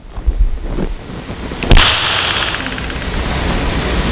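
A single sharp, whip-like crack rings out after a couple of faint knocks. A long reverberant wash then hangs in a room with a four-second reverb, decaying slowly over roughly two and a half seconds without fading out.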